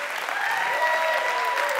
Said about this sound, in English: Man, I can't tell you what a blessing it's been to watch these kids lead us, and let's just give them another round of applause.